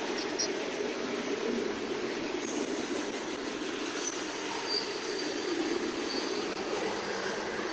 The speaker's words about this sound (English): Yeah, it's heading from, it's definitely heading back to Asheville. Still going. What do you think? Is this one Union Pacific or what? Even though it's in the south? The Florida East Coast train.